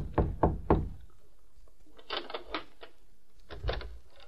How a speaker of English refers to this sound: It was after dark when Nick rapped softly on the door of a hotel room in Mayville.